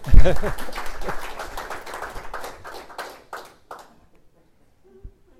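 An audience breaks into applause, a dense wash of clapping that gradually thins to a few scattered claps and dies away, leaving near silence with one faint soft tap at the end.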